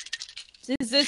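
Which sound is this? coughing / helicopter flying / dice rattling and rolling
dice rattling and rolling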